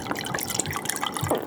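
liquid being poured

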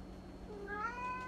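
cats meowing

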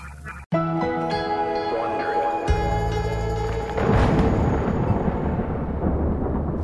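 thunderstorm rumbling

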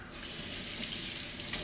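water running

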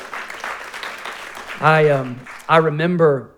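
church audience clapping

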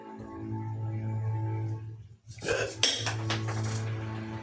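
dice rolling and clattering

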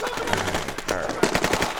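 gunfire

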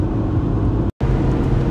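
car driving on highway

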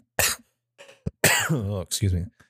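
person coughing

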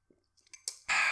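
sipping hot coffee

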